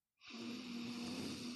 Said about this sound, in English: So you breathe in. I call it I am breathing. You breathe in.